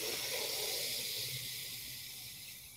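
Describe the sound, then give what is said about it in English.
A long, deep breath drawn in steadily during a guided breathing exercise, expanding the lungs and belly, a breathy hiss that holds for a few seconds and tapers off slightly toward the end, with no talking. “And the next breath, see if you can go really deep. So let your lungs expand, let your belly blow out like a balloon.”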